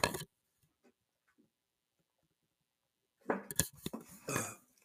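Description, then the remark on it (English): A sharp clatter, a quiet stretch with faint scattered ticks, then a burst of clinking glass and kitchenware with a rushing, pouring sound as a glass of water is filled. “Hold on, I'm getting some water.”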